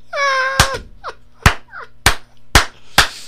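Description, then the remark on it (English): A person claps five times, imitating a group of people applauding in a hallway. The claps are sharp, loud, and spaced about half a second apart. A brief high whistling or vocal tone comes first, with faint chirps between claps. “pretty soon they're just, everybody is applauding”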